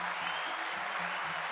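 A crowd claps steadily, a dense wash of many hands hitting together at a moderate, even level with no voices heard over it.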